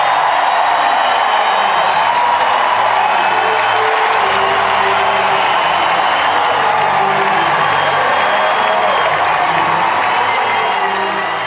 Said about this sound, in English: And when she returns, this is the reaction she gets when she takes the court. A standing ovation.